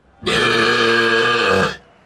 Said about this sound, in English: 109.7, ooh, much closer, within 0.2 decibels of the record. And that belch there, look, resembling an unhappy calf or a goat, perhaps, who's just been denied access to its mother, 0.2 decibels away from the world record.